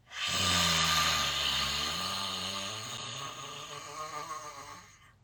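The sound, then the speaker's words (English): A single forceful, raspy Lion's Breath exhale during a guided yoga session, lasting about five seconds, with a low gravelly growl under the rushing air that slowly fades out. “When I do Lion's Breath, it sounds very demonic sometimes, and it sounds like something not of me, and sometimes I don't think it is, okay?”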